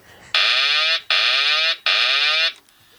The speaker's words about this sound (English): I was going to have my cockpit alarm clock, which wakes me up. But I've gone for the autopilot disconnect noise today.